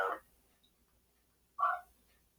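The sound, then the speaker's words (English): Two short, sharp barks from a dog in the background reacting to a televised football game, separated by a pause of about a second and a half, with quiet in between and no talking. “dog's reacting to the game in the background, too, apparently.”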